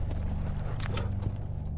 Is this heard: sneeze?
no